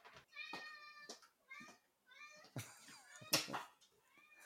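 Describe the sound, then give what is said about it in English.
A cat meows repeatedly, a string of drawn-out, rising and falling cries with short pauses between them, fairly loud and clear with no talking over it. “Never be sorry for a cat interruption.”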